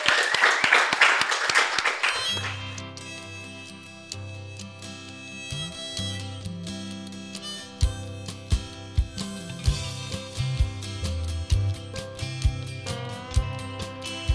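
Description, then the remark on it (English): A short burst of dense audience applause for author Max Porter at Powell's in Portland opens, roughly two seconds of loud clapping, then gives way abruptly to steady instrumental music with a deep bass line and plucked notes. “Let's give a big round of applause to Max Porter.”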